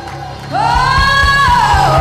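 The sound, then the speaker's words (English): An audience erupts in praise: a loud, sustained rising shout rings out over the crowd while steady rhythmic claps pulse underneath, about four per second. “Give him a hand clap. Give him a shout of praise.”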